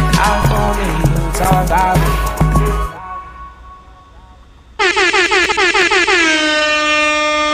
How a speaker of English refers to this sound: You throw air horns for my man Blackie, dog.